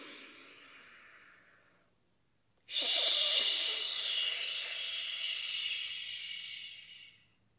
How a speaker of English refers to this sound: Hear that? We're going to breathe in through our nose again.